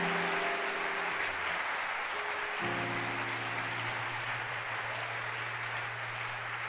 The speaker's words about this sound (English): Don't stop clapping. Don't stop clapping. Keep clapping. Let it be loud. Let it be loud.